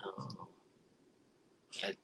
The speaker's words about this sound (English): One's coughing. One's coughing.